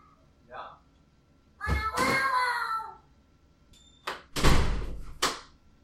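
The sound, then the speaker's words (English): A person imitates a cat for children with one drawn-out, whiny meow that slides downward in pitch, followed by several sharp thuds like a door banging. “Oh, that was me meowing like a kitty to my kids.”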